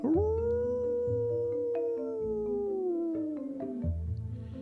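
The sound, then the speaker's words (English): A single long, mournful wolf howl in a dark forest rises quickly, holds a steady wavering pitch for several seconds, then slowly falls away, with a low rumbling background beneath it. “It's just a wolf, or maybe a werewolf.”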